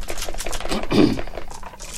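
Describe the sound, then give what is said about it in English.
Several dice are rolled for new initiatives, clattering across a table in a dense run of quick, sharp clicks, with a louder rattling burst in the middle before they settle into lighter taps. “So, now let's roll new initiatives and then decide what happens next.”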